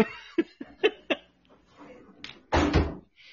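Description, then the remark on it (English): A few light knocks and clatters as stock is brought in through a back door, which then swings shut with one heavy thud and brief rattle. Faint murmuring sounds sit in the background. “He's in the back room getting all the stock. Getting it in the back door.”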